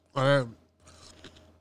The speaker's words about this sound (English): Can you not chew ice on the mic?